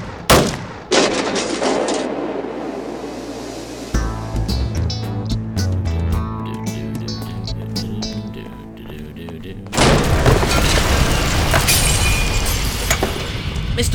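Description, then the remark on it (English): Hammering nails into a door: a quick series of sharp, hard knocks over a low hum, framed by bursts of loud, harsh noise before and after. “I finished nailing your door on.”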